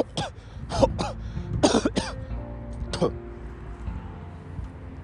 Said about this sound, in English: If I have cough, excuse me, guys.